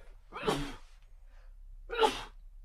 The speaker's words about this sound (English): I'm about to sneeze, so get ready.